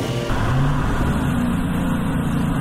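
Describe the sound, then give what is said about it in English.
A car with a leaking radiator revs up and pulls away, setting off for the park, a steady low rumble with rising tonal whine as it accelerates, loud and continuous for a few seconds. “We set off for the park.”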